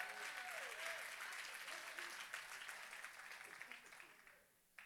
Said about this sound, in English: Come on and clap. Help me.